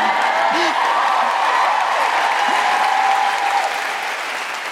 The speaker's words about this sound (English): It doesn't put us, feel free to cheer and clap.